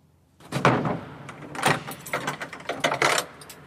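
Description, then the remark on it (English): A strong, heavy door in the basement of a mausoleum is worked open and shut, with a series of loud clunks and rattling scrapes spread over a few seconds, and no voices. “It's a quite strong door all the time.”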